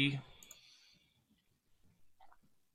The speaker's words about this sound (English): So let's just make some dice rolls and try and quickly do this one.